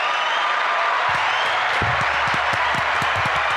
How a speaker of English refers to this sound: We got to give him a clap, right? Give him a clapper.